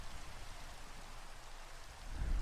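Steady rain hisses evenly throughout with no voices, and a low rumble of thunder swells faintly toward the end.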